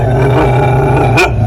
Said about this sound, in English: Okay, you're standing between me and the door, just so you know. Come here, buddy. Now, I can't let you in because letting a dog into the radio station might be a bad thing.